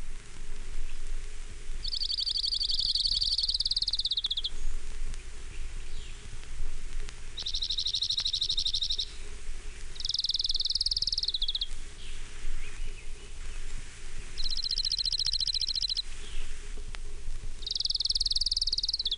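orange-crowned warbler song

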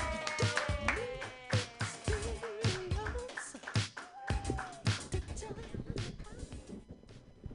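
audience applause

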